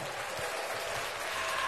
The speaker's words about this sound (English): The crowd goes wild.